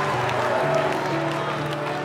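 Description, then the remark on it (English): An audience breaks into a steady round of applause, a dense wash of clapping that holds at an even loudness throughout, with a faint tonal hum beneath it. “you can clap once, go ahead.”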